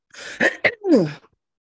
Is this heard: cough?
yes